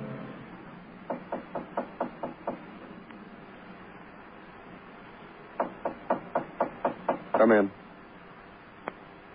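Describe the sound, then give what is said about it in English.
Two bursts of firm, rapid knocking on a door, about seven sharp raps each, separated by a pause of a few seconds, followed by a brief rattling clatter and one faint final tap. “Well, I knocked you.”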